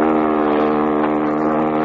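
A speedboat engine drones steadily and loudly throughout, a dense harmonic hum with a slight rhythmic throb and no voices.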